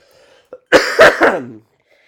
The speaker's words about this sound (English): And the little cough there will tell you he's certainly not a gangster.